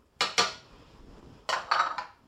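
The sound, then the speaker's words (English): Eggs being stirred into muffin batter along with 1 pound of pumpkin and 2/3 cup of water: a spoon scrapes and knocks against the mixing bowl in two short clusters of bright, clattering strokes, with a soft wet churning in between. No one speaks. “Then we're stirring these eggs into the batter along with the pumpkin and the water that you measured out.”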